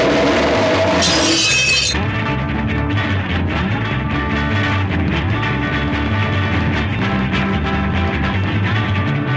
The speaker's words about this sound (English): You hear the chair scraping and then the glass breaking and everything that.